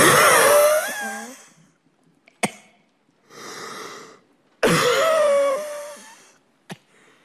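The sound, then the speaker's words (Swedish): A voice imitates a grandmother's extremely heavy, labored breathing: two long, loud, rasping wheezy gasps with a softer breath between, with small clicks and no talking. “jag har ju sett din föreställning, och något av det mest gripande, det är ju när du imiterar din mormors otroligt tunga andning.”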